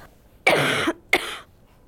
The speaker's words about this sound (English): We're always taught to cough in a Kleenex when actually coughing in your sleeve is better